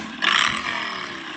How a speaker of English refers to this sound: Who's on a motorcycle or an ATV or something?